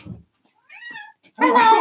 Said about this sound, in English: Oh, we should let the cat in. Should we let the cat in? Yeah. Hang on, I'm going to let the cat in. Okay, she's meowing at the door.